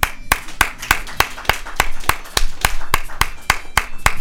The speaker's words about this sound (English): Let's just give ourselves a round of applause.